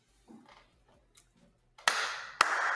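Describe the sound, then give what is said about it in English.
At ringside in Las Vegas, after Tyson Fury beats Deontay Wilder by 11th-round knockout, a quiet, faint opening gives way to a sudden burst of dense applause, a sharp clap spikes through it, and the steady, loud crackle of many hands continues to the end. “I don't know if you can hear that, but that's applause.”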